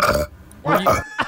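A man lets out loud, throaty burps up close: a short one, then a longer guttural belch, and a brief grunt-like tail.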